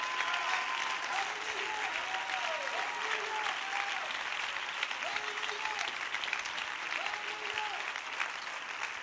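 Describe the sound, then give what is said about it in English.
A large audience claps steadily in a dense, continuous wash of applause, with scattered shouts and vocal whoops rising above it throughout. “Clap your hands again and shout.”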